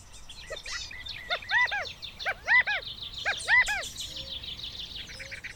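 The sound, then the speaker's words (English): Birds twitter and chirp outdoors among desert plants in Arizona, with three bursts of repeated, rising-falling calls over a steady backdrop of fainter birdsong. No distinct buzzing stands out. “Buzzing, fluttering, and twittering among the plants are Arizona's pollinators.”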